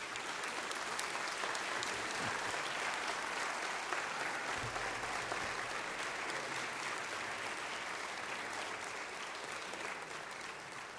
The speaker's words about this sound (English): So let us take a moment not only to witness to the joy of our intergenerational community, but to welcome our little ones with a round of applause.